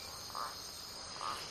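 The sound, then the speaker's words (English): A steady nighttime chorus of insects and frogs in a jungle, with dense high-pitched trilling throughout and two brief louder chirps standing out, ambient and continuous with no voices. “As you can hear from the frogs and insects around me right now, I am in the jungle, in isolation.”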